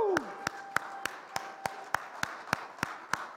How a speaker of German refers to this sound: Ihr darf mal sehen, wer ist ein geborener Österreicher, wirklich geborener, hier geboren. Steht mal alle auf. Für euch haben wir einen Applaus. Wuhu!